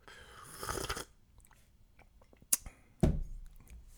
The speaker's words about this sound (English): Having a nice sip of tea.